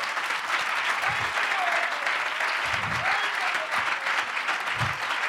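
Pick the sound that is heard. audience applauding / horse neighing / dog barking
audience applauding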